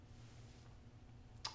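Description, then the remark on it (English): A single sharp, crisp hand clap lands near the end, after a stretch of quiet low hum with no talking. “Whoa, that was intense. Gotta clap.”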